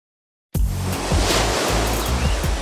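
Ocean waves surge and break on a beach, a steady loud wash of surf with rumbling low swells rising and falling, starting abruptly after a short silence.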